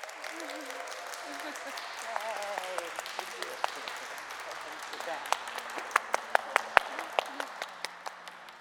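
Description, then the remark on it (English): An audience breaks into applause to welcome new members, a dense patter of many hands clapping that grows into sharper, louder individual claps before thinning out. A few voices murmur underneath at the start. “Let us welcome our new members with some applause.”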